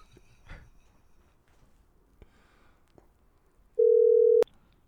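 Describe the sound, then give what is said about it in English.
A single loud, steady telephone ringing tone of an outgoing phone call sounds for about half a second near the end, preceded by quiet background and a few faint clicks and handling noises. No one speaks. “We're going to call Duncan. He better answer.”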